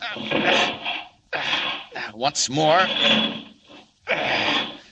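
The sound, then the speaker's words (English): Superman wrenches and forces the door off a locked car in a parking lot in harsh, grinding bursts of straining metal, with a brief spoken phrase between the efforts before another loud heave. “Ah, locked. I've got to get in. Hope nobody's looking. Now then, just take a door off.”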